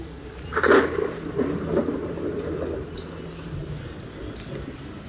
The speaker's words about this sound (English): Yes, there was wind. And thunder.